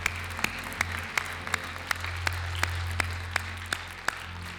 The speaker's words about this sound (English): Put your hands together and give praise to the Lord. The Bible says, clap your hands unto the Lord. Amen. When you clap, you're not just clapping, you're giving praise to the Lord.